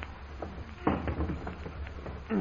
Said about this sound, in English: Colo, look for an iron ring on the floor. Yes, it went. I know. See, I found it. Here it is. Now help me, Colo, to lift this trap door.